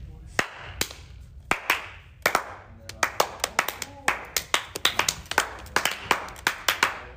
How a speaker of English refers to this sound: Let's get a round of applause going. I want to hear the whole school. Get in on this.